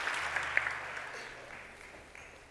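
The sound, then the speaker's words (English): An audience at FCBC claps together in praise of the Lord, a dense, sustained wash of applause that gradually fades, ending with a sharper thump near the end. “Give the Lord a hand clap of praise on today as you take your seat.”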